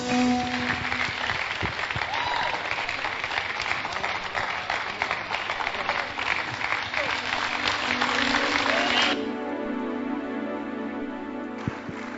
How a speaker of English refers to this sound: Please put your hands together again for them.